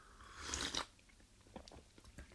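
A brief slurping sip of hot coffee, followed by a quiet stretch of small mouth clicks and soft swallowing noises, with no talking.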